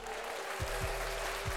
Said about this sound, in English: I appreciate the applause, but I really don't need it.